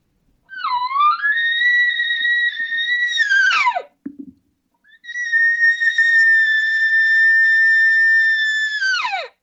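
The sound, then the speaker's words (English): Two long, high, whistly mews imitating a cow elk call, each rising slightly then held steady before dropping sharply at the end, with a brief pause between them. “But a cow will do something like this.”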